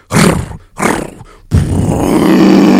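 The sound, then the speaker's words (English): A voice imitates a revving chainsaw held over a man's head as he stands in the middle of a wagon: two short, rough, loud bursts followed by a longer sustained rasping drone with a steady low buzz underneath. “and he's standing in the middle of the wagon with this chainsaw over his head.”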